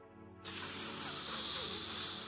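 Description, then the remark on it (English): After a brief quiet moment, a steady, loud hiss of white noise switches on abruptly and holds constant, bright and airy, with no talking. “You know the new one now is white noise.”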